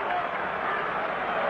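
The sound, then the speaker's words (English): A steady, dense roar from the Baltimore home crowd at a baseball game, cheering without letup in the last of the fourth inning with the Orioles leading 3-0, loud and even with no single voice standing out. “The Baltimore crowd alive here in the last of the fourth.”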